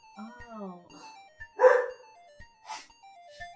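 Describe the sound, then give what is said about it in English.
Dogs yelp and bark in short bursts, a whiny cry followed by a loud sharp bark and a few fainter ones, with a thin steady tune playing faintly behind. “I don't know what they're barking at.”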